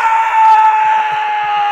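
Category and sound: human body sound, person screaming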